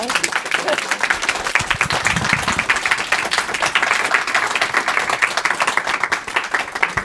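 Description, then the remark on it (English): An audience bursts into sustained applause, a dense, steady wash of many hands clapping at full volume for about seven seconds without letting up. “By a round of applause.”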